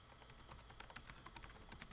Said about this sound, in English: If you hear frantic typing, that's me Googling this.